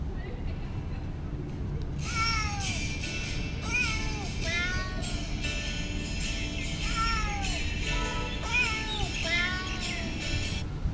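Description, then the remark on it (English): A cat named Doja meows over and over in quick succession, a steady stream of short, bright, rising-and-falling cries set against a constant low rumble of background noise. “No, I meant the cat's name.”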